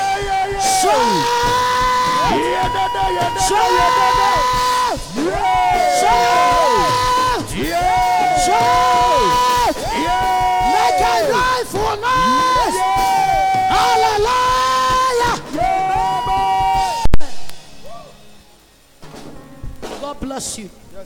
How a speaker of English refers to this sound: come on, scream!